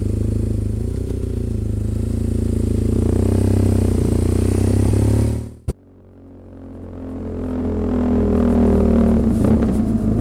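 A BMW motorcycle engine rumbles steadily, cuts briefly, then revs and pulls away, its loud throaty drone rising as it accelerates off.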